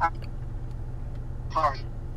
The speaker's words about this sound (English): If it goes in and out, it's because the car is on and I got the AC.